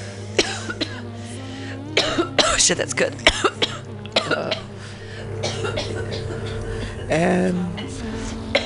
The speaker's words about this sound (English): coughing commercial break. Oh, crap. Oh, shit. A greedy hit.